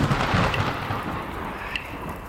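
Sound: thunder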